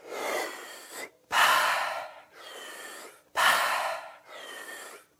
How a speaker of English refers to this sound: So we're going to give that up for this moment. And we're going to be breathing deep again in and out of your mouth. Let us begin.